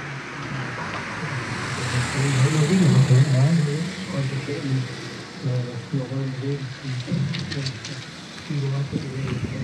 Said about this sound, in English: Oh, there's a car coming. I'm so excited about the car that nearly ran me over. Right, here we go, listen, see what you can hear.